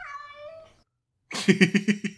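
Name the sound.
cat howling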